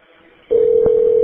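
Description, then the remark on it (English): After a brief quiet moment, a steady telephone dialing tone of a jail call switches on and holds loudly, with a short click-like burst partway through. “Your party has answered. Please hold for acceptance.”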